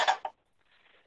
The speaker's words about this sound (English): Oh yeah, it's okay, 'cause one load of dishes is done, and I can fill up the dishwasher again.